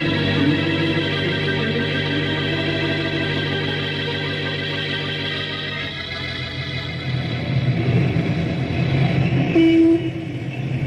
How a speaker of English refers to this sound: Little do the citizens of Knotty Pine realize why three ranger cars weave quickly through the traffic. There's nothing unusual about that. It's happened often.